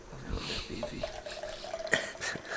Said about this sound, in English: Right now we're pouring bong water into his drinking cup. Hopefully he'll come home and drink it.